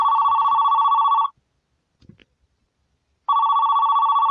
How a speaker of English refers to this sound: As I was calling the paramedics. 911 operator picked up. As the phone rung for the 911 operator, I waited.